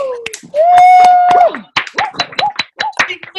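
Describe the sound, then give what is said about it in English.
Sparse, scattered applause from a few people over a compressed Zoom call line: uneven sharp claps and snaps, a long held whoop early on, then short cheering vocal sounds mixed with the clapping. “So at stop, everybody, unmute your mics right now and give me a huge round of applause.”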